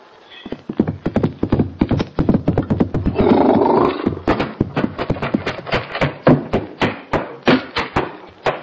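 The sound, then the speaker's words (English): Horses gallop, their hooves pounding in a fast, steady drumming throughout, with a loud, rough whinny rising over the hoofbeats midway. No one speaks. “Get the horses, boys. We'll get him and do our own hanging.”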